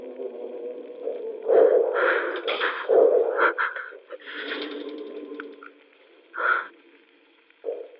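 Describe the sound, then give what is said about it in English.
A hand crank being pulled, grinding and creaking in uneven bursts for several seconds. It is moderately loud, with a few sharper surges and brief pauses in between. “He's pulling on the hand crank.”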